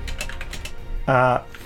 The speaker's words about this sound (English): I'm typing it in so that I can find it.